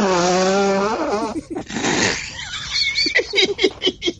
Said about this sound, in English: I have to mute myself because I need to blow my nose, and my son says, I blow my nose like a sad elephant.